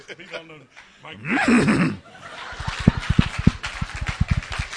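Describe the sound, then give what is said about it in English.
A person imitates a horse's neigh with a loud, wavering vocal whinny, then follows it with a fast run of rhythmic, sputtering pulses, fairly loud. “I think that's my best horse impersonation.”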